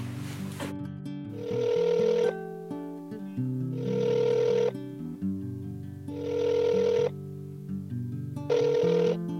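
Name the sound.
phone call ringing tone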